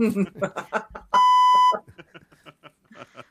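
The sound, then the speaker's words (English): A loud, steady electronic censor beep from a beep button, a single sustained tone lasting about half a second, cuts through in the middle of ongoing speech, with talking on both sides. “Should we just have the beep button ready to go?”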